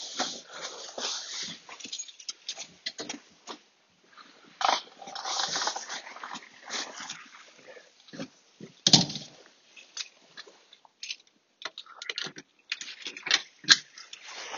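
A female dog whimpers softly in short, broken bursts, mixed with scuffling and clicking movement noises throughout, with no voices.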